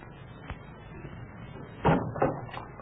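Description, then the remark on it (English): A door is opened and shut: a light knock-like thud, then a louder heavy thump followed by a couple of quieter knocks as it swings and shuts, over faint low background rumble. “Close that door.”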